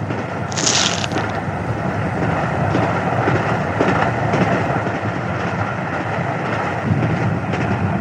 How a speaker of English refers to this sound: They're on a train.